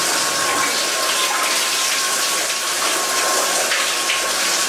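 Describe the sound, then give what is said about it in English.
A loud, steady rush of water spraying from a human car wash, a device for washing elderly and infirm people, a continuous broad hiss that holds evenly for the whole few seconds with no voices. “The human car wash.”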